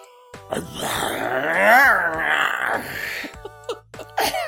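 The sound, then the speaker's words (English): A recording of a lion roaring, played from a YouTube video: one long, drawn-out roar lasting about three seconds, rising and then falling in pitch, followed by a few short, breathy grunts. Clear, with no talking. “I'm going to pull up a YouTube video of a lion roaring.”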